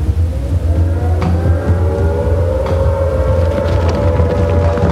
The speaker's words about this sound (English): I know that plane. It's a Gullwing. Where do I... Stinson Gullwing.